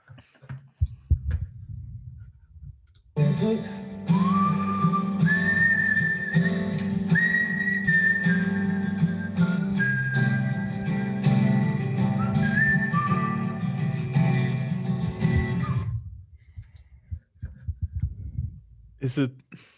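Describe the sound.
A song plays for about twelve seconds, a clear whistled melody gliding over strummed guitar and a steady low beat, with people talking briefly before and after.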